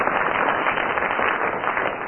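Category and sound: crowd, audience applause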